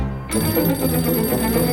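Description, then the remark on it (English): A telephone bell rings loudly and steadily after a brief quiet start, a bright, continuous metallic trill that keeps going to the end with no voices. “So, the telephone.”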